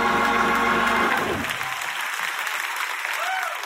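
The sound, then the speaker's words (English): A church audience applauds steadily in praise to God, dense clapping with raised voices and cheers mixed in at the start before the applause carries on alone at a strong, even level. “Oh, that's a cute golf clap. Give him a real praise in this place too.”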